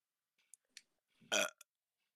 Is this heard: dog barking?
no